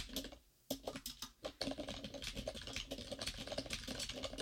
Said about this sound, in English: Wow. That is a keyboard, man. I can't edit that out. But you know what? You shouldn't, because there's nothing sounds better than the clackety-clack of a professional typist. But it's, like, a little muffled because it's in the background.